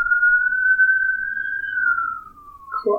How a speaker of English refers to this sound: And that's, there's like a siren outside.